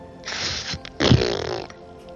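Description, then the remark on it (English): A loud, rasping burp erupts in two gusty bursts, the second longer and deeper with a rumbling, throaty tail. No one speaks. “I just opened my mouth and just farted so much that it overwhelmed what I was actually speaking.”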